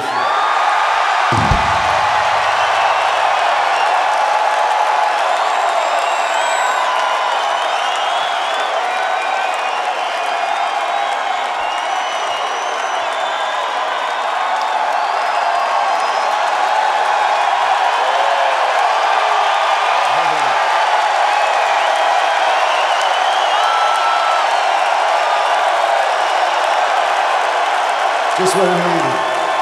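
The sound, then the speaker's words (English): A large live crowd in Grand Rapids roars and cheers steadily for about thirty seconds, a dense, loud wash of voices with scattered whoops and whistles rising above it and a couple of low thumps. “You are turning out to be a hell of a crowd.”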